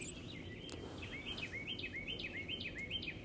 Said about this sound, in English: You hear those birds?